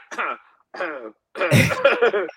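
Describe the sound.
Two short voiced bursts followed by a harsh, explosive cough mixed with vocal sound, close and fairly loud, with brief pauses between the sounds.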